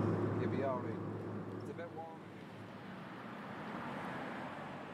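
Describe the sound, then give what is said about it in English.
Steady low engine drone and broad road noise fill the inside of a moving car carrying a basket of pigeons in the back, with a brief murmur of voices from people chatting in the front near the start over the constant rumble. “We're going to get out of the car now in 2 minutes, okay?”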